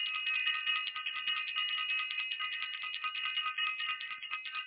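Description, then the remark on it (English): A bell rings continuously for several seconds, a bright, high metallic tone trilling with a rapid, steady rattle and no pauses. No voices are heard. “We're going to run this up again, and I'm going to ring the bell.”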